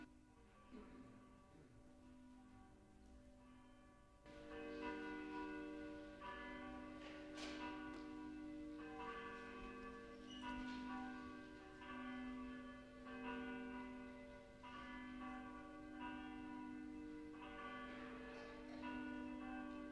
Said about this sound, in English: Please stand. The bells will call us to worship.